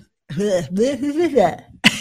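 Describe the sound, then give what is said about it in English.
A drawn-out, throaty voiced sound gives way to a single sharp, breathy cough near the end, loud. “Where's I'm the tired. Cough button?”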